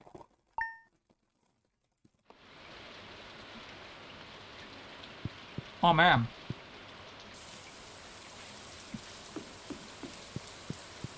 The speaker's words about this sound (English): It's raining.